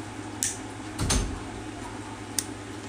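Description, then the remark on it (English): A bedroom door swings shut with a low, muffled thud, set between a couple of sharp latch-like clicks, otherwise quiet. “Get off my bed. Close my door.”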